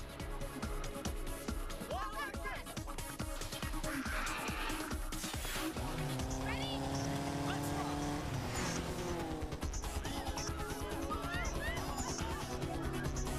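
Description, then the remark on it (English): The engine of an out-of-control bus roars loudly and continuously as it speeds right past a bus stop, its pitch climbing as it revs, with screeching tires and a dense, chaotic clatter mixed in. “A bus! It's out of control.”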